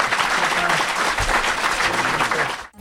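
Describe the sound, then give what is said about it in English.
Steady, dense applause from an audience for the panelists at Brewer Comedy Hour, many hands clapping at once in a broad crackling wash that holds evenly for a few seconds before cutting off abruptly. “Why don't we have a round of applause for our panelists?”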